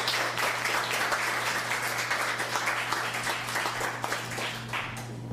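A crowd applauds steadily, many hands clapping in a dense, continuous patter at a fairly loud, even level, with a low steady hum underneath and no voices.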